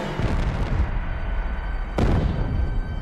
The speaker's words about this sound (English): Oh, that's a big bang. That must be the Nakwita, then.